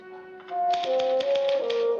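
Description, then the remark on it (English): A typewriter clacks out a quick, fairly even run of about eight keystrokes as a man types a script in an office building, layered over steady, sustained background tones that shift pitch like soft music. “So he goes back to typing the script.”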